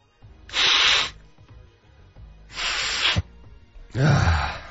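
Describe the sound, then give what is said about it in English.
Three short hissing bursts of a Walgreens nasal spray pump, each lasting about half a second with brief pauses between, and no talking. “Whatever this is, this Walgreens nasal spray, it just ran out of energy.”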